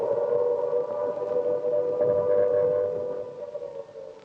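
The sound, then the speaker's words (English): An air raid siren in wartime London at night wails in a long, steady tone, loud and sustained across the whole stretch, with a faint rise and waver before it begins to trail off at the end. “And there's the wail of the Banshee.”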